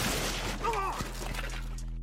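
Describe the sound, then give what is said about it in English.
A noisy crash as a snack table shatters, with a sharp crack partway through and a dense wash of breaking debris, while a brief voice-like cry rises over the clatter. “Brash on Bettis caused a snack table to shatter.”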